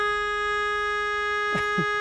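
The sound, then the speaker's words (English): A car horn blares from six cars back at a traffic light that has turned green, in one long, unbroken honk that holds a steady pitch for about two seconds, with a brief muffled burst of sound near the end. “You haven't noticed it's gone green, and then you hear this from six cars back.”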